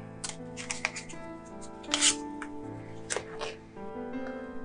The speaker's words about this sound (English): I'm shuffling my cards.